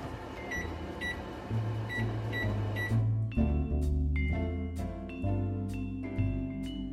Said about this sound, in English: And that's going to bake for, I would say, 25 to 30 minutes or just until the tots are golden. So I'm going to set my timer.